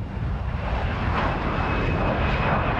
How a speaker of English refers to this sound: And the sight of an airplane going overhead never gets old either.